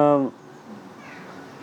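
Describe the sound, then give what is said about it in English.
A cat going into a bush lets out one short, loud meow right at the start, then it fades into a quiet stretch of low background noise with faint, indistinct voices. “Look, cat's going in the bush.”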